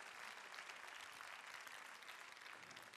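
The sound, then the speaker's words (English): An audience claps steadily for a few seconds, a dense wash of many hands with no voices over it. “Yeah, that you can clap for.”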